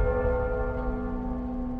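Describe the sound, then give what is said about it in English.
A ship's heart bell rings out as one long, sustained metallic tone with layered overtones and a low resonant hum beneath, holding steady and fairly loud with no voices, tolling to signal a full muster call to the ship. “You hear the tone of the heart bell.”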